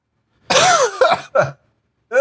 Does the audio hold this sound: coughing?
yes